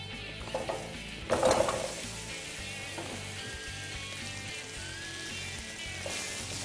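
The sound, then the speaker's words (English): Vegetables, including potatoes, yams and leeks, sizzle steadily in plenty of hot olive oil in a pan heated with a torch: a broad crackling hiss with a louder burst early on as they hit the pan, then a constant spitting fry with occasional stirring clinks. “Pour our vegetables in here.”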